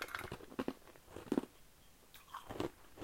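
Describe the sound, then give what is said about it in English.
Crunchy chewing of ice, with sharp cracking bites in irregular bursts, a few loud crunches spaced about a second apart over softer grinding, and no talking. “I'm eating ice.”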